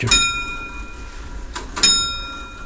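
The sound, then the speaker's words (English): A clock ticks with two sharp metallic strikes about two seconds apart, each leaving a bright, high ringing tone that slowly fades, over a faint low background hum. “When you're sitting in the room now, if you haven't done television on or anything, you'll hear a ticking. It's a nice tick.”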